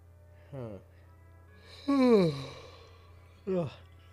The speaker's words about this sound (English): Ugh. How do you stop yawning?